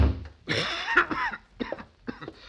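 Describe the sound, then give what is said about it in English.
A harsh, rasping cough from a person with a cold: one long hacking fit, then several shorter, throaty coughs in quick succession. Fairly loud, with no talking. “Hey, you got an awful bad cough there”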